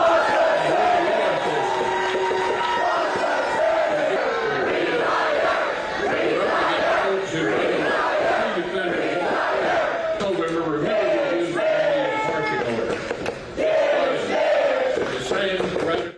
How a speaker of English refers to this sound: I want to talk about what happened with Mitch McConnell over the weekend. Yeah. So he was booed at home. This is a political gathering in his state. Here's what happened.